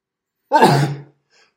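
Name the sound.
sneeze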